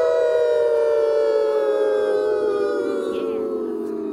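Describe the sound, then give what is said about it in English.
A person imitates a wolf howl: one long, loud, sustained vocal tone with rich harmonics, sliding slowly downward in pitch over about four seconds. “Do a one nice awoo. Clean awoo.”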